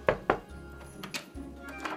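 Two sharp, hollow knocks on a door in quick succession, followed by a few fainter thuds and light shuffling sounds over a low background hum. Scrooge is knocking at his nephew Fred's door, arriving for dinner.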